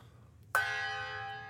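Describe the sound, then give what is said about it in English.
A single gong strike rings out sharply after a quiet moment, its bright metallic tone shimmering and sustaining with many overtones as it slowly fades. “We found the gong. The gong has returned, my friends.”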